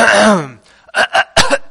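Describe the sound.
A voice imitates a young girl's fake cough: a drawn-out vocal sound followed by a few short, sharp forced coughs in quick succession, fairly loud.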